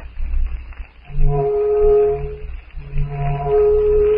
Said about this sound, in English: To Jane Porter, carried along at unbelievable speed in Tarzan's arms, the distant blast of the steamer's siren brings conflicting emotions. It signalizes the rescue of her father, Philander Clayton, and herself.